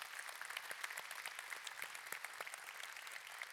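An audience breaks into steady applause, many hands clapping at once in a dense, bright patter that holds an even level throughout, with no voices rising above it.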